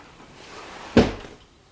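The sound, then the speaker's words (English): An open window is shut as thunder begins outside, with one sharp, fairly loud knock ringing out briefly before fading into quiet, with no voices. “And it's just started to thunder, so hang on. I'll shut that.”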